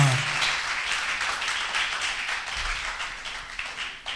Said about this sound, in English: Even as you sit, I want you to clap with your hands to the glory of God.